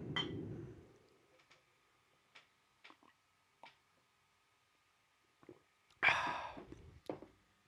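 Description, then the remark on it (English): Quiet handling of a coffee mug: a soft thump, a few faint clinks and taps, then a noisy slurping sip of coffee followed by a breathy exhale. No one speaks. “Let's take a sip together, and then I'll get into this conversation.”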